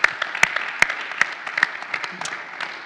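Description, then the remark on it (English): A round of applause from a crowd: dense, continuous clapping with sharp individual claps popping out irregularly, holding steady at moderate loudness for about three seconds with no voices. “Hey, can we just give them a round of applause?”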